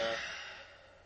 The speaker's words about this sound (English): Train just went, though. That's true. These trains are dangerously close together.